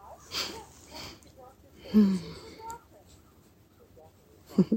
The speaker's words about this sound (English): Breathing in deeply now.